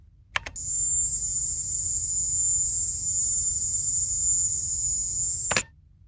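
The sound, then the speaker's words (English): A recording of the Havana Syndrome sound released by the Associated Press: a shrill, piercing high-pitched drone, like a mass of crickets chirring in unison, holds steady for about five seconds and cuts in and out abruptly with a click at each end. “It sounds sort of like a mass of crickets.”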